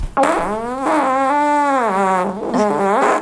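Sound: fart played from phone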